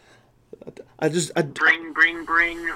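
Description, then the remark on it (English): A voice imitates a telephone ringing, with a few quick soft clicks followed by several loud, warbling "brring" tones in close succession. “What that? Someone on the phone. Hold the phone.”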